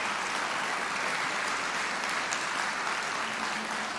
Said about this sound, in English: just want to applaud something like that. That was good.